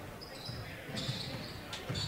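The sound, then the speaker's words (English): A basketball dribbled on a hardwood court during a Tigers women's game, a few dull bounces spaced about a second apart, with sneaker squeaks and a murmuring arena crowd in the background. “High screen, working on the dribble”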